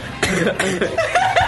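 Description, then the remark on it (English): A person mimics a fit of coughing, with four or five short, harsh bursts in quick uneven succession, fairly loud, with no talking in between. “He does a cough.”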